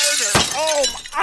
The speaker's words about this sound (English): You just smashed Thomas's laptop. Okay, Walter, keep smashing. Walter, keep smashing. Smash to your heart's desire, Walter.